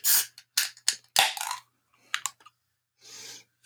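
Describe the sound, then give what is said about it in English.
A few sharp clicks and scrapes lead into a loud crack with a hissing burst as a beer can opens, then a short, soft fizzing pour into a can glass. No one speaks. “I'm going to crack mine and pour it into my beer review journal can glass”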